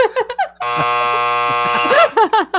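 A loud, harsh game show buzzer blares in one sustained two-second blast, its droning tone running steadily while people keep talking over it.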